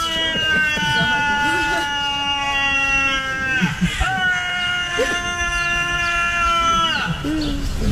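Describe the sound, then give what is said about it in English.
A ram lets out long, strained, human-like screams, several sustained wavering cries in a row, loud with brief breaks between them. “Bob found a ram screaming like a human.”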